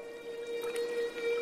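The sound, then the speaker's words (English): A humpback whale sings a long, steady, eerie moan that holds one pitch, with faint watery crackles and splashes drifting around it. The call sounds echoing, with no voices present. “But these haunting calls continue to intrigue scientists and musicians alike.”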